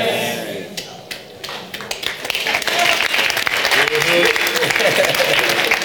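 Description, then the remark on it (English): An audience in a church breaks into applause, many hands clapping in a dense, steady patter that swells louder after a couple of seconds, with voices murmuring and calling out beneath it. “I know a lot of people, especially people who come late, they won't clap for things like this.”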